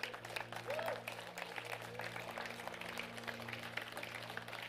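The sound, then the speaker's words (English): A crowd applauds steadily for the moms for several seconds, a dense patter of many hands clapping at an even level, with a low steady hum underneath. “Now one more time, I want to give us, let's give a clap for the moms.”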